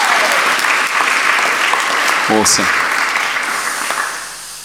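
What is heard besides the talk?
audience applause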